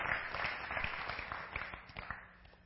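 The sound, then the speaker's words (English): A church audience applauds the team for the hours they put into their work: dense, steady clapping with sharp irregular claps scattered through it, holding fairly even before tapering off slightly toward the end. No one speaks over it. “And I just think we should give them a hand of applause for the hours they put into that.”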